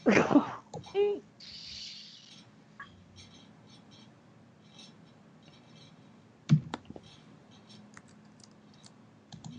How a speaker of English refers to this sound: Who's typing? Yo, mama. No, you're not. I can hear it. You can hear the keys clacking? Yes. Clickety clack of the clackety keys.